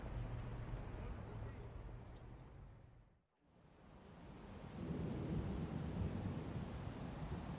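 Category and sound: nature, thunderstorm with rolling thunder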